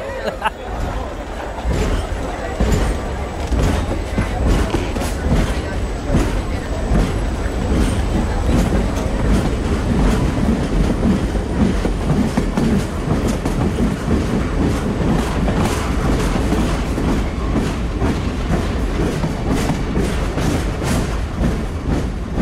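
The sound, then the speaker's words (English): A passenger train trundles steadily along the rails, a continuous rumbling clatter with rhythmic clicks from the wheels, heard from inside the carriage amid a faint murmur of passengers. “The train trundled along.”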